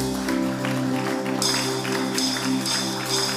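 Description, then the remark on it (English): An audience, risen to its feet, claps steadily and loudly, a dense wash of hand claps rising in bursts over sustained keyboard chords, with no one speaking. “Look at how you are clapping.”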